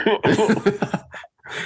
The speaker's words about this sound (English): that was …, a fake cough